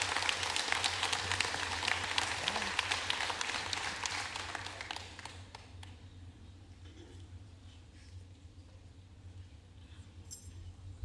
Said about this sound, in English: Let's give these families a round of applause.